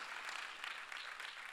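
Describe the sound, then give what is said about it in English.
A church audience claps and applauds together in praise, a dense, steady wash of many hands at moderate volume, with no voices standing out. “Come on, clap right now.”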